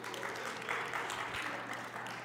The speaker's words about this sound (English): Or are we clapping because we're still happy they're still here, or?